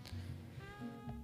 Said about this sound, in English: I'm so sorry. I did that unintentionally. It looked intentional from where I'm at. It was. I intentionally burped, but I was kind of out to lunch, so I didn't like think that it was going right into the microphone.